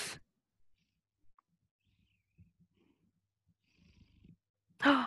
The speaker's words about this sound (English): Oh, I hear the purring. He's trying out for Darth Vader.